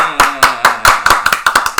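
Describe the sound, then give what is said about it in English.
A short round of applause: about a dozen sharp, evenly spaced claps in quick succession, fairly loud, with a sustained voice faintly audible underneath. “Give us one. A round of applause.”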